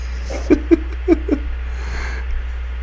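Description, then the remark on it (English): Four short, high-pitched meows in quick succession, fairly loud, over a steady low background hum, with a faint rustle near the end. “Stop meowing, go get a job.”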